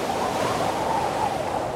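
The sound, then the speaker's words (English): A steady, full roar of ocean surf, with waves washing continuously against the shore, loud with no voices. “Silently he walked along the shore of the thunderous sea, where the battle lines of breakers crash and drag”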